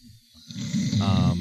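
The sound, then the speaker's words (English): A voice imitates snoring with a low, rumbling, gravelly rasp that builds from a soft breathy start into a louder, drawn-out growling snore. “He snores like me, too.”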